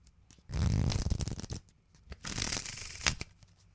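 A deck of playing cards is shuffled: two quick riffling bursts, each a dense flutter of snapping card edges about a second long, with a brief quiet gap between them.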